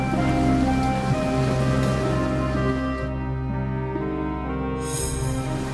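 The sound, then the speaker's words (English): A steady, dense wash of heavy rain pours continuously, with a low sustained musical drone humming beneath it and no voices. “The rain covered the whole earth.”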